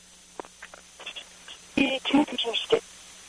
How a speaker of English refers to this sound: Excuse me? Your phone broke up again.